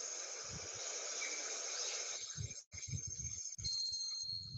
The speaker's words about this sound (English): Did I hear water and birds? And to me, it sounded like peaceful. I felt tranquility.